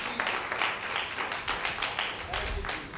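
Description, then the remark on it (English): A church audience claps steadily for about three seconds in praise of the Lord during a morning service, a dense wash of many hands at fairly even volume, with faint voices murmuring underneath. “Let's give the Lord one more hand clap of praise here this morning.”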